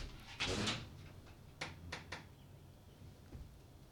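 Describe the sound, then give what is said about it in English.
A pub door opens with a brief scraping rush to let a dog in, followed by a few sharp knocks or latch clicks against a low background rumble with no talking. “She's at the door. You want to let her in?”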